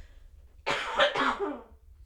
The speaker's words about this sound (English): Oh, I have to cough.